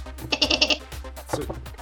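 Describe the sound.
A person imitates a goat, letting out a wavering, nasal bleat that quavers rapidly for about half a second, followed by a shorter second bleat, fairly loud.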